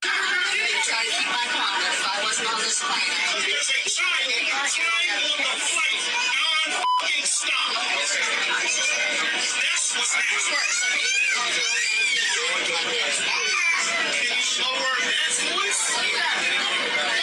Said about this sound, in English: Okay, did you hear the kid crying? I heard a lot. That's an angry plane. Yeah. I don't want to be on that plane.